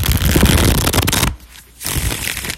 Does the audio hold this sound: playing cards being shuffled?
yes